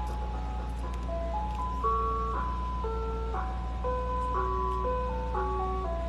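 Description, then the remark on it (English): An ice cream truck stopped outside a house plays a loud, tinny electronic jingle, a repeating stepwise melody of sustained tones, over a steady low engine idle rumble, with no voices. “This ice cream truck is out here. Just stopped right outside my house. Playing this loud, disgusting music.”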